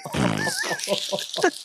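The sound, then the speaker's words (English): A person farts while laughing hard: a loud, low, buzzy rasp lasting under half a second, followed by several short bursts of laughter. “I laugh so much. I farted then, honestly.”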